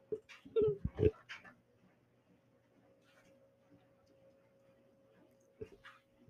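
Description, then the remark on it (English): A dog named Bungles gives a quick cluster of sharp barks and whimpers at the start, falls quiet for several seconds, then lets out one more short yelp near the end. No talking. “Here, I'm gonna make him bark.”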